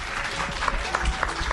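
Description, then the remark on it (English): A crowd at a summit in Greenville, South Carolina claps steadily for themselves for getting up early in the morning, a dense wash of many hands at moderate loudness with no break, sounding like a sizable audience. “And give yourselves a round of applause for getting up early this morning.”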